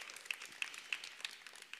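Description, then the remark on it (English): A church audience breaks into applause for its production team, which sets up and tears down the church, a dense, steady patter of many hands clapping at once, fairly soft overall with a few sharper claps poking through, and no voices. “Can I just applaud our production team that we don't have that many issues?”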